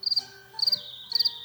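Crickets chirp in three short, evenly spaced bursts, each a rapid high-pitched trill, fairly clear with no voices, like a quiet night.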